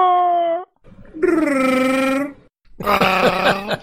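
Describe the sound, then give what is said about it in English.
A voice imitates a Wookiee growl in three drawn-out, harmonic-rich bursts: a short moan, a longer wavering howl, then a rough, trembling roar. The bursts are loud and separated by brief pauses. “Why don't you just do a wookie growl and make me feel terrible?”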